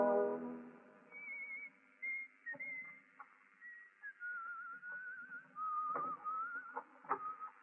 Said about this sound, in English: He hasn't whistled that well.